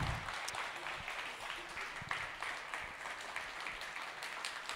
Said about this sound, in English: If you believe in this word and you believe in righteous rulership, and you believe you're a part of it, I want you to stand up and give God a big round of applause this morning. Come on. Come on.